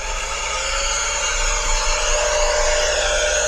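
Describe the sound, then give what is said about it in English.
A gasoline-powered leaf blower runs steadily, a loud, unbroken high-pitched whine over a dense roar of rushing air, holding the same level throughout without pauses. “Yes, it's the gasoline-powered leaf blower.”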